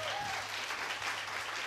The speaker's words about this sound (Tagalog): Okay, ready na ba kayo? Pumalakpak lahat ng excited muna.